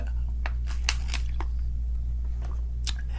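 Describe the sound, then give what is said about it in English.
Wet mouth sounds of a preacher pausing mid-sermon to sip water: a handful of soft slurps, smacks and swallows scattered irregularly over a steady low electrical hum, with no talking. “Excuse me, I have to drink me a little water.”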